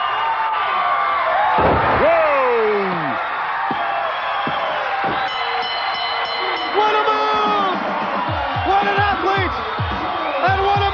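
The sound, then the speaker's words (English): A wrestler is slammed onto a mat with a belly-to-back suplex: a heavy thud with a few sharp impacts cutting through a loud, roaring crowd of fans full of cheers and rising whoops, at Disney MGM. “Belly to back suplex.”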